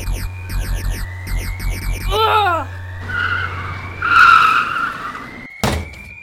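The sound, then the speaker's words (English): A car skids to a stop: tires screech and squeal in repeated sweeping bursts over a low engine rumble, swelling loudly before ending with a sharp thud. “We're moving too fast! I can't just stop the car!”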